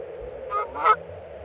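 Two quick honks from geese in flight, one after another, the second louder and harsher, carried over a steady low background hum with no talking.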